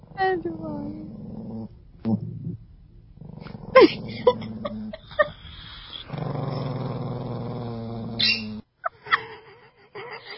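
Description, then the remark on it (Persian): A small chihuahua dog growls in low, rumbling stretches broken by high, thin whimpers and whines, loud, with short pauses between bursts. “این چواوا خیلی باحال.”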